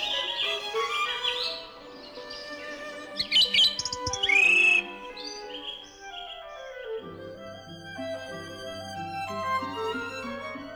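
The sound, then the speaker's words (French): A nightingale's song bursts out suddenly in bright, rapid trills and chirping phrases, loud, with sustained lower tones underneath in the second half and no talking. “Voici le rossignol. Il éclate tout d'un coup, brusquement.”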